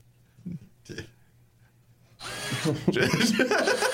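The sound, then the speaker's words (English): After two brief vocal bursts and a pause, a voice launches into a loud, sustained buzzing whine imitating a power drill drilling out someone's teeth, rough and wavering until the end. “He's drilling out his teeth.”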